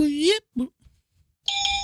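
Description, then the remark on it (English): A bright, steady bell sound effect from a soundboard rings out near the end, fairly loud, following a couple of short vocal sounds and a pause. “Deserves a bell.”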